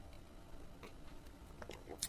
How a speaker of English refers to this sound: So, as it were, let me sip some tea.